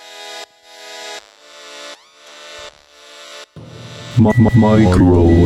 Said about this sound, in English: Microwave.